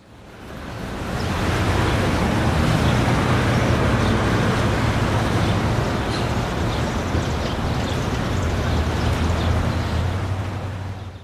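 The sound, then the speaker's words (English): A steady, dense roar of street traffic in Washington, D.C. fills the air, a continuous wash of engine and tire noise with a low rumble underneath, fading in at the start and holding evenly throughout. “I can't believe all this freaking traffic.”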